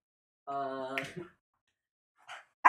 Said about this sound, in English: Yeah, we got dogs out. Yeah, these dogs have been wilding.